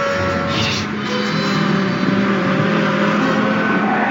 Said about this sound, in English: And can we please get the truck noise from when Bones tries to run out into the street? That was nice.